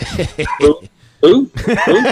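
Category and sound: animal, dog barking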